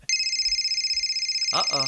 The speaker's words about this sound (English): This is our new Not Sorry podcast phone that we just got recently, and it's actually ringing again.